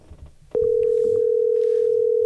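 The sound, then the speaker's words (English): After a moment of low background noise, a steady, loud telephone tone starts and holds unbroken to the end, like the ringing heard while waiting for an outgoing call to connect. “Yeah, so hopefully the next car pick up. Come on, pick up the phone.”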